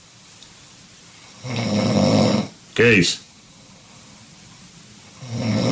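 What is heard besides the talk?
man snoring loudly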